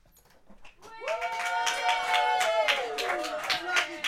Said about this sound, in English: So can we have a control room cheer for Jupiter, please, if you don't mind?